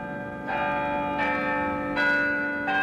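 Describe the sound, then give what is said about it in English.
The historic bells of Albany City Hall ring out in a steady, overlapping peal, each strike blooming with a bright metallic onset and a long shimmering hum that hangs in the air between strokes. “The historic bells of Albany City Hall return us to Albany Street, a public affairs presentation of Albany Broadcasting.”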